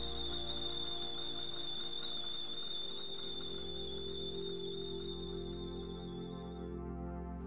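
A kettle boiling on a stove whistles with a steady, piercing high tone over a rumbling boil, holding continuously for several seconds before the whistle fades out near the end. No voices.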